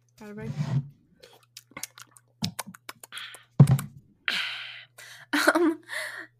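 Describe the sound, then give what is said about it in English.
Someone takes a drink of water: wet sipping and gulping sounds, small clicks and swallows, and a few sharp breaths between sips, with no talking. “I'm taking a water break.”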